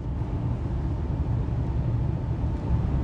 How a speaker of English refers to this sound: Hold on. Give me a sec. I'm driving on the highway now.